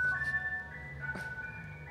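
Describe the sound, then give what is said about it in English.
A tinkling ice cream truck jingle plays a bright, thin melody of sustained tones over a low engine rumble, steady, with no one speaking. “I haven't had an ice cream truck for fucking years, bro.”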